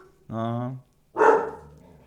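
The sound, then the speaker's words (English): A puppy barks twice, a drawn-out yelping bark followed by a sharper, louder one, with no other sounds around it. “Sorry if they're making your dogs bark at home, guys.”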